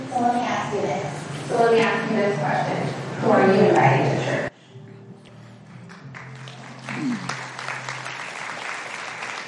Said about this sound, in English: You would have clapped more enthusiastically if it weren't for the fact that you know it's your turn now.